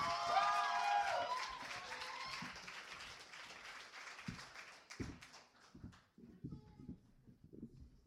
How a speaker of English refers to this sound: Give her a big round of applause, guys. Come on up here.